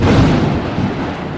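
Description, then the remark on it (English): A loud thunder crash sound effect with a deep rumbling roar that rolls on steadily for over a second, no voices present. “This is the lightning bolt round.”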